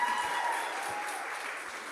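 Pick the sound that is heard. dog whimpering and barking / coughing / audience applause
audience applause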